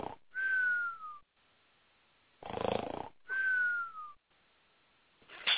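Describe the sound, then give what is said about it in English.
A cartoonish snoring sound effect: a rasping snore followed by a high, falling whistle on the exhale, repeating in a slow cycle with no talking. “Where I'm going to delete the snore button.”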